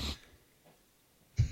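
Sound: sniffing beer aroma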